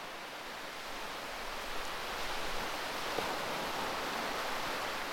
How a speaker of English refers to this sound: Listen, it's now properly raining, so let's go back inside and then we'll pick up from there.